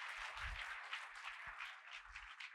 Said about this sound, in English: Well, put your hands together and give the Lord a hand clap of praise.